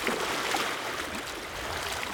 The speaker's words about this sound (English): Here, waves lap at a stony shore, while native bush climbs and clambers to the top of Tūtere Moana.